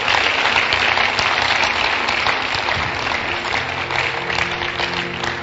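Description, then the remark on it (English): A church audience claps for Jesus during a sermon, a steady, dense, sustained wash of applause that stays loud throughout, with a faint low tone humming underneath toward the end. “Clap for Jesus.”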